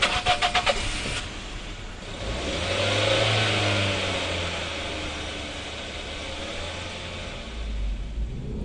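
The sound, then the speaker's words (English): The engine of an old 1991 Toyota Corolla, assembled in New Zealand, cranks with a quick rhythmic starter chatter, catches, revs up briefly, then settles into a steady, rumbling idle. No one speaks. “I drive a 1991 Toyota Corolla, assembled in New Zealand.”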